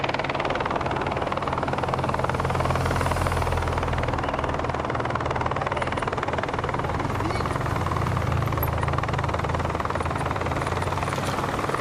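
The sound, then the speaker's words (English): A steady, loud roar of motorbike engines rumbles through the whole stretch, a dense wash of motor noise as a group of motorbikes passes by ahead of the peloton in a cycling race, with no voices. “Here's a flotilla of motorbikes and Jumbo-Visma leading the peloton through.”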